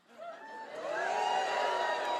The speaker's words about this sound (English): A little bit of booing, a little bit of positive.